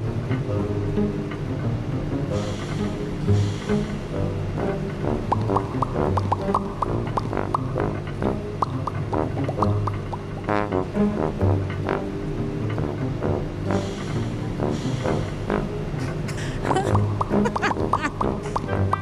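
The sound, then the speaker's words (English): A voice imitates the popping of food cooking in a microwave with quick mouth pops like bubbles, irregular, scattered over a steady low droning hum for the whole stretch, with no talking. “Just sitting there, watching it spin, watching it cook, and then just popping like little bubbles in the air.”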